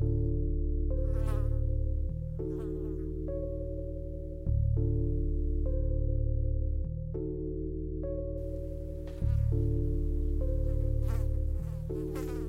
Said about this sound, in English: sleep with that fly buzzing around.